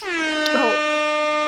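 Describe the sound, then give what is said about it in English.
A loud, sustained air horn blast with a rich stack of harmonics, holding steady for about a second and a half before cutting off, with no talking over it. “You know, it's become popular, or it's been popular for like at least the last 3 years or so, that someone plays an air horn sound, and like that definitely deserved an air horn.”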